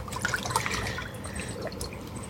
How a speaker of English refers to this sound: So grateful for the birds in the water lapping.